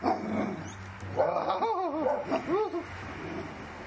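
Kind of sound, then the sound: animal, dog barking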